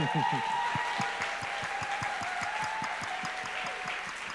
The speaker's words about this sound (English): If you wouldn't mind standing, let's applaud them.